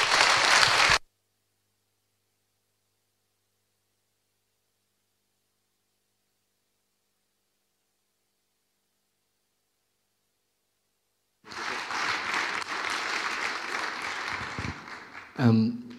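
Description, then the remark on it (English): A brief burst of clapping cuts off into a long silence, then an audience breaks into sustained, dense applause for several seconds before a voice starts speaking as it fades. “But for now, can I ask you guys to give these folks a massive round of applause?”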